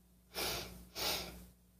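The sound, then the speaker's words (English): Two quick, airy sniffs, one after the other with a brief pause between, against a faint low background hum and no talking. “Two sniffs.”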